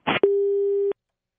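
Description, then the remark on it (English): A short burst of line noise as a telephone call disconnects, then a single steady electronic busy-signal tone sounds for well under a second, clear, before cutting off into silence. “We lost him real quick. He's a busy man, apparently.”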